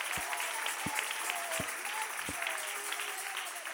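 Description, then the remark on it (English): A church audience claps their hands together for the Lord in worship, a dense, steady wash of applause, punctuated by a few regular low thumps about every three-quarters of a second, keeping an even rhythm throughout. “Come on, clap your hands for the Lord together.”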